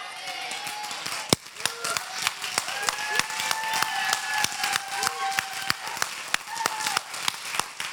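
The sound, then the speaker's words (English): Hands clap in scattered, irregular bursts, with a few sharp, loud claps standing out over a busy backdrop of crowd voices and cheering. “but I'm going to declare it out. Clapping.”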